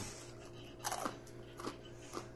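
Three close, crisp crunches of someone biting into a pretzel, spaced about half a second apart over a low steady hum, with no talking.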